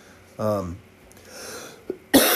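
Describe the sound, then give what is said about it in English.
A brief voiced throat sound, a short pause, then a harsh, loud cough bursts out near the end: the lingering cough of a person with chronic bronchitis. “And please forgive me, I'm still fighting this cough.”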